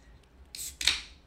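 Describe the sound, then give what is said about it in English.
A beer can cracks open: a sharp metallic snap, then a second louder pop that trails into a short fizzing hiss, heard alone without any talking. “Can't have big talk without cracking some cans.”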